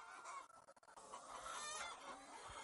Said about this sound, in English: And now the chickens are protected from predators for the night, and they're locked in so that we can move them wherever we need to move them, so they'll function behind the cows like they're supposed to.